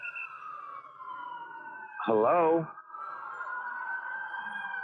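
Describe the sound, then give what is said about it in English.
An emergency siren, heard over a phone, wails steadily throughout, a high sustained tone with a slow sweep, while a person briefly calls out over it partway through. “I can't hear anybody. I just hear sirens on my phone.”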